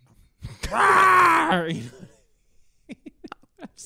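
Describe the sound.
A person imitates the growl of Blue, the raptor from Jurassic World, with a loud, drawn-out guttural groan lasting about a second before trailing off, followed by a few faint, quick clicks.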